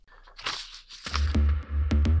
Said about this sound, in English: Here, my pages are getting mixed up.